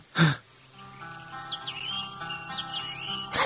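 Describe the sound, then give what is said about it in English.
Birds chirp and tweet in quick, scattered calls over a soft, sustained musical drone, with a brief louder burst of sound at the start and again at the very end. “The birds.”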